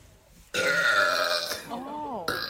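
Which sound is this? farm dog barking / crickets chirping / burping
burping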